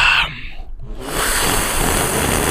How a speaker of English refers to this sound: We've heard that people really are enjoying those slurps. They're digging. Oh yeah, max it out.